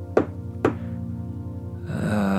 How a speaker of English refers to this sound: You get up and stretch a little bit, and then you hear a knock at the door.